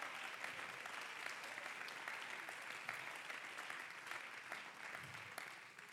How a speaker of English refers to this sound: Oh, clap your hands to the Lord. I feel the Holy Ghost right here.